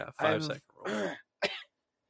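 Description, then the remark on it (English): Three rough, voiced coughing and throat-clearing bursts, the first two longer and hacking, the last short and sharp, then silence. “Oh, let me cough that up real quick.”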